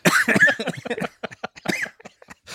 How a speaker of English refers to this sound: Oh, my gosh, you're coughing. You're coughing.